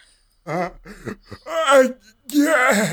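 A loud, theatrical fake yawn: a person voices several drawn-out groaning bursts, rising and stretching, with a breathy gasp-like start and a long sighing finish.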